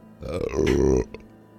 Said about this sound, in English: Yeah, there's a really warm... and very stanky burp aimed at you, Moonbrook. Aimed right at you.